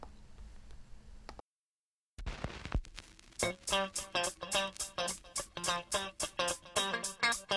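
After a muffled, noisy opening and a brief silence, a rising swoosh leads into an upbeat dance track from the video game Jet Grind Radio (Jet Set Radio), built on bright, choppy stabs repeating at a steady, brisk tempo.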